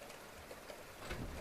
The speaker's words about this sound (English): Lovely weather we're having, isn't it? You like the rain in Ireland?